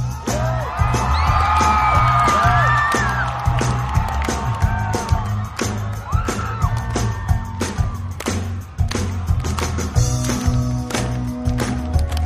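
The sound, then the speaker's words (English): A loud concert crowd at Coachella cheers wildly during a band's encore, with rising whoops, whistles and shouts over a dense roar that holds steady for the whole stretch, a low musical rumble underneath. “Crowd goes nuts, you can hear it.”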